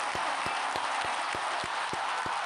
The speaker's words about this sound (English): Let's get a fucking round of applause.